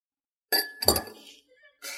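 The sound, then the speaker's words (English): Glasses clink together in a toast, a bright ringing tap followed by a second chime, with a short rustle of movement and faint background noise. “Cheers. Cheers.”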